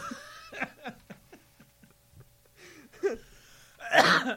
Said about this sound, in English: Wait, that was you? That was you trying to clear your throat? Yes. I just was trying to do it off mic, but I realized I was more into the mic.